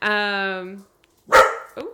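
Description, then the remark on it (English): A neighbor's dog barks: a drawn-out, tonal yowl gives way to a short pause, then two sharp barks in quick succession, fairly loud and with no clear talking over them. “We got some neighbor dog issues, huh?”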